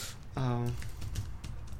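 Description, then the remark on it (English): Scattered, fairly quiet clicks of typing on a computer keyboard, with a short voiced sound from a person near the start and a steady background hum. “Stop clapping, type!”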